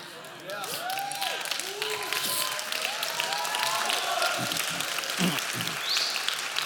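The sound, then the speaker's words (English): An audience claps in a steady, crackling patter, mixed with scattered cheers and overlapping voices from the crowd throughout. “You sound like an Amway meeting, clapping like that.”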